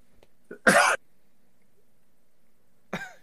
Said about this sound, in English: We're coughing him to death.